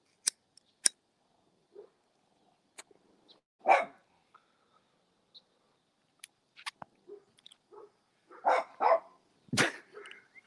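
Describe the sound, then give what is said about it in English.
A dog barks frantically in several scattered, muffled bursts, clustering into a quicker run near the end, with sharp clicking sounds in between. “The fucking dog is going crazy.”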